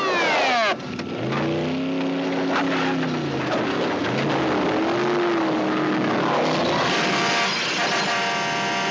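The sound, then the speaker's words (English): A car engine revs up and down repeatedly, its pitch swelling and dropping, loud, with a rough, gritty mechanical noise underneath and no voices. “A car possessed.”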